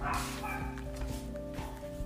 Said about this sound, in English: and there's a dog. Hang on.